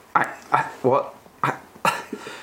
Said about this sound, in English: You can cough and splutter all you like, but I think you'll find that the compliments are going to come rolling in.